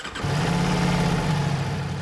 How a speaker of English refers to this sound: So Daniel picked me up with a motorbike.